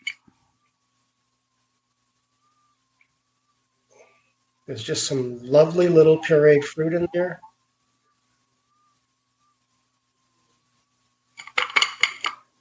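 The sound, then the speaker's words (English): A muddled, strained bourbon cocktail is poured into a rocks glass over ice, a quick burst of bright clinking and rattling lasting about a second, heard after a stretch of talking and a pause. “Strain it. Add bourbon. And pour it into a rocks glass over ice.”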